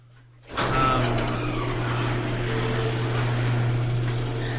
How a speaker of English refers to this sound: That is our garage door intro.